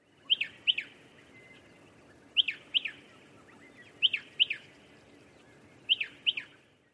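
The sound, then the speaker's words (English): A striated pardalote calls alone, giving four bursts of sharp, high-pitched doubled chirps spaced about every one and a half to two seconds over a faint, steady background hiss. “If you guessed spotted pardalote first and striated pardalote second, you were correct.”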